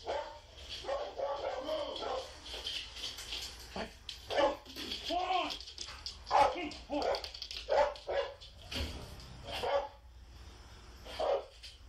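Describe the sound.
A dog barks repeatedly in loud, irregular bursts, some close together, over a low steady rumble, with muffled voices mixed in underneath, as police officers serve a warrant.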